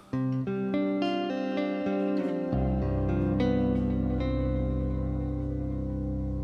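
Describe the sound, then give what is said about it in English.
Electric guitar notes fed into a swelling, self-oscillating echo effect, repeats piling up into a loud, sustained droning wash with no one talking. “We have to unmute the goo and then send the guitar to the goo.”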